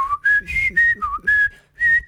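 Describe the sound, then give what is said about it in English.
A whistled tune of about six sustained, clear notes in a steady, unhurried rhythm, rising and dipping in pitch with short pauses between them. No one speaks. “Is what we hear of …. And also whistles.”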